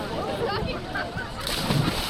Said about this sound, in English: It's a hot, sunny June morning on the Boston Esplanade. 150 swimmers in numbered yellow and orange caps tread water in the Charles River.